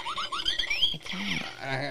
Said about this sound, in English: I got a fart machine right here. That was a... That's exactly what my fart sound like.